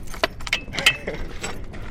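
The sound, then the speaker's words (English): A City of Page water department worker's ring of keys jangles in several bright, metallic bursts, with a few sharp clicks and a brief ringing tone as a key unlocks the door of a tiny wood-paneled shed on desert rock above the Colorado River, over a low background rumble. “walks across a crunchy patch of red dirt and pulls out his keys.”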